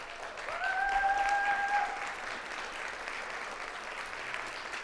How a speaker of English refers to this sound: And I want you guys to see and give a round of applause